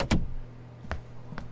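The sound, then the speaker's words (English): A door shuts with a loud, sharp thump, followed by two fainter clicks of the latch settling, with a low hum underneath and no voices. “Oh, and close the door, please. Thanks,”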